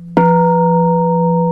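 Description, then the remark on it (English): A bell is struck once with a sharp attack, then rings on in a steady, sustained mid-pitched tone with clear overtones that barely fades. No one speaks. “So let's use the example of the bell.”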